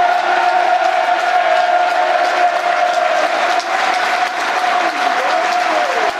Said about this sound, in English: There's a minute's applause now for young Isla Cate, who so tragically passed away in the week.